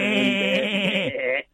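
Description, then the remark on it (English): A single drawn-out, wavering sheep bleat from a human voice, loud, lasting just over a second before cutting off into quiet. “You can have a full-on dialogue with a Scottish sheep, but with a Welsh sheep, they just look at you like...”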